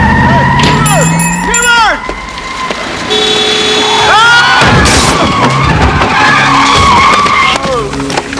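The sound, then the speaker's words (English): Loud, sustained tire squeals rise and fall as a car skids, followed by a heavy crashing impact into another car, with more screeching and rumbling engine noise after the collision. “You hit my car!”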